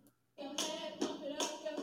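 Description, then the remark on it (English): Two girls clap their hands in a steady rhythm, sharp slaps landing roughly every half second, fairly loud over a faint tonal background. “That's just two girls clapping.”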